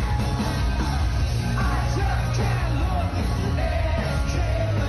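A large concert crowd sings along loudly to a band, the final act on stage, many voices merging into a dense, continuous roar with melodic rises and falls over a heavy low-end rumble from the venue.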